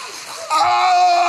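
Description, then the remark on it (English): A man lets out a loud, raw primal scream that starts with a rising cry and then swells into a sustained, strained yell held at full force. “Every now and then, I just got to let out my own primeval scream on that one.”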